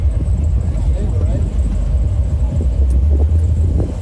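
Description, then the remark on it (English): A Ram TRX truck doing a four-wheel burnout at Florida Truck Meet, tied with a tow strap to a mud truck that is not moving, its engine roaring loud and steady with a deep, continuous rumble for the whole stretch, with indistinct crowd voices mixed into the noise. “This is a TRX doing a four-wheel burnout tied with a tow strap to a mud truck that is not moving.”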